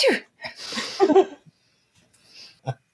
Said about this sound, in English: So somewhere in the middle of a street, … sneezes.